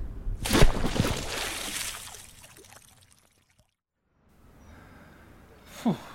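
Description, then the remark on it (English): Loud splashes as people jump and plunge into a river, followed by sloshing and churning that fades to near silence, then a short sharp breathy gasp near the end. “Good thinking of someone to put this river here.”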